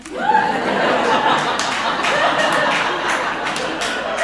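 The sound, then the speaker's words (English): An audience laughs and claps together, a dense wash of steady applause mixed with chuckles that holds at an even loudness for about four seconds. “Thank you for clapping.”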